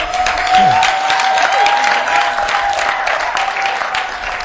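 A church audience claps steadily and loudly for several seconds, applauding a member chosen to join the church's sound team: a dense wash of overlapping hand claps with a thin, sustained tone humming underneath and no clear speech.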